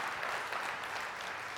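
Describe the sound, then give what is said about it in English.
A church audience breaks into applause for the Lord during a sermon, a dense, steady wash of many hands clapping at once with no distinct individual claps, holding at an even level throughout. “Look at the Lord, a hand clap.”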